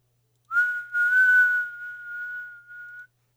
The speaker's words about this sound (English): That was a good whistle.